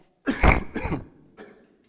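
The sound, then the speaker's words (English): Two loud coughs in quick succession, followed by a softer, shorter cough or throat clear before silence. “I'm going to cough again, so sorry.”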